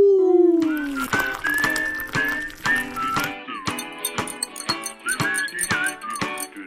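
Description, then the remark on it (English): Someone imitates whale song with long, sliding moans and high gliding squeals, backed by a steady run of sharp clicks and rattles. It is fairly loud, with no talking. “I'm just doing some whale music.”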